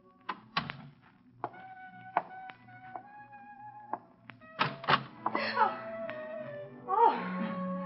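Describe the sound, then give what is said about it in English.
The back door of an apartment is worked open with several sharp wooden thunks and rattles, a drawn-out creak in between, then more clattering as it swings, followed by a brief vocal exclamation. “10 minutes later, you've left your car in an alley and walk up to the back door of your apartment.”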